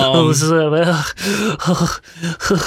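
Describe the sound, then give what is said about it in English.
A voice mimics heavy panting, as of a character panting right next to someone: a drawn-out groaning breath followed by several quick, rhythmic, breathy huffs, loud. “Felipe is is panting right next to you.”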